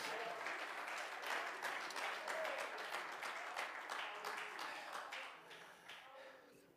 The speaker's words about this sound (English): Oh, clap your hands this morning.